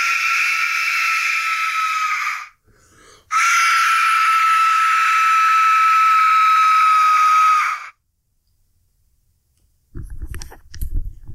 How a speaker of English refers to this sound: I'm taking off my headset right now, walking across the room and walking towards you, blowing the Aztec death whistle. Here we go.